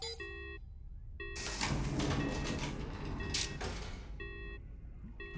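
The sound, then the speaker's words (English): Repeated electronic warning chimes sound, then an outer door slides open with a loud, sustained rushing hiss and rumble lasting a few seconds, followed by the chimes again. “I think the outer door is clear.”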